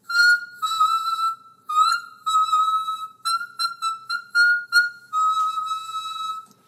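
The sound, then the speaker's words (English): High, thin sung notes from the back of the throat, demonstrated as an example and not a whistle tone, about ten held tones of varying length with brief gaps between them, fairly loud, with no talking. “See, that isn't a whistle tone. That is just a high note from the back of the throat.”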